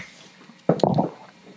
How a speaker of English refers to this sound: All right, so I'm pouring a little bit of the oat bran beverage from Quaker.